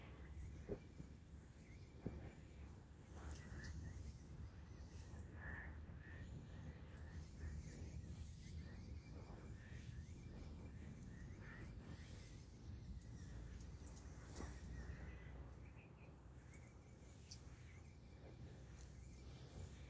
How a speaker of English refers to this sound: Let us listen to a little bit of rain on the tin roof and the bird song as we go into the silence.